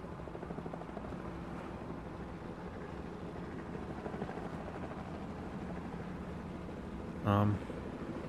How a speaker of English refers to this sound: We're being followed. A helicopter is closing in behind us.